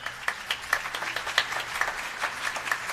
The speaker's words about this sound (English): Round of applause for these great helpers.